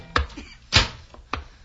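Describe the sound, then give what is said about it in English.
Three firm knocks on the door of hotel room 502, five floors up, spaced roughly half a second apart, each a sharp, solid thud with quiet in between and no voices. “The room clerk looked worried, but I punched the elevator button, and just 43 seconds and five floors later, I was knocking at room 502.”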